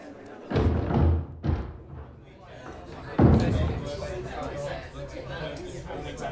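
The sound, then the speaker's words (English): A door slams shut with a few heavy, booming thuds, followed by the low murmur of a crowd chattering in the background. “Oh, thank you for the door”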